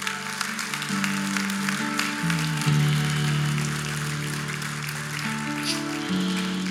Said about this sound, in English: Yeah, let's clap just a little. Clap.